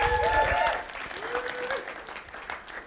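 A round of applause from an audience, a dense wash of many hands clapping steadily, with a brief whistle or cheer rising above it at the start before the clapping carries on.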